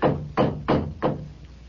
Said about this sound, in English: Number 13, Gehenna Street. The door knocker. It's hideous. Gargoyle. Never mind that. Just knock.